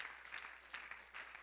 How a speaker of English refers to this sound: Come on, clap your hands one more time to the Lord.